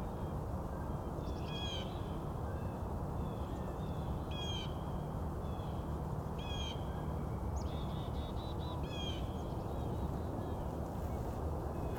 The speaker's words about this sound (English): Some talkative chickadees.